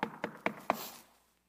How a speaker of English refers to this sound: I go knock on the door.